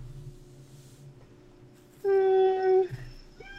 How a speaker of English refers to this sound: Oh, I heard that meow in the background. Meow. Yeah, it's Dizzy. Dizzy wants to party right meow.